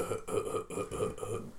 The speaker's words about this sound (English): Excuse me. You burped like 3 times today. Hey man, it happens.